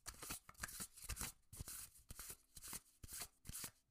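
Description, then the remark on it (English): An oracle card deck is shuffled in a steady run of quick riffling, papery flicks and soft slaps repeating for several seconds with no one speaking. “All right, let's do a shuffle.”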